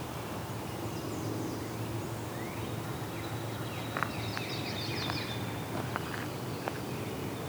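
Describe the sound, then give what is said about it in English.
A few faint, high, thin zeet calls of a yellow-rumped (myrtle) warbler, scattered over a steady outdoor hiss with a couple of soft clicks; no one speaks. “I think it's yellow rump, myrtle warbler type. Yeah. Oh, that zeet call.”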